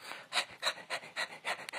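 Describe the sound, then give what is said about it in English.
A dog named Wolf, living in the mountains, panting in quick, regular breathy huffs, about six or seven in under two seconds, airy and hissy, with no voices. “He lived alone in the mountains, except that he had one dog, and this dog's name was Wolf.”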